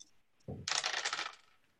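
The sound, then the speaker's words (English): Two dice tumble onto a hard surface: a soft thud, then a bright, rattling clatter bouncing for about half a second before settling on a double six. Fairly loud, with no voices. “A double six, I'm not kidding.”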